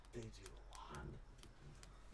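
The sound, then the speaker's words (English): Scattered, irregular clicks like keys being tapped on a keyboard, running under a person's voice throughout. “I was like, what the fuck is that noise? Is you typing?”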